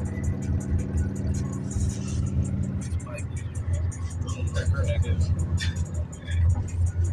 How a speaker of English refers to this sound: Damn, traffic fucked up both ways. I didn't see it. That's tough.